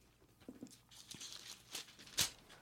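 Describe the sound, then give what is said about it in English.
Paper rustling and crinkling as someone struggles to turn a page, several soft scrapes building to a sharper crisp flick near the end, no voices. “It's more of my famous Foley work here. Can't turn a fucking page.”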